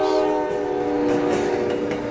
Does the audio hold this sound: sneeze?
no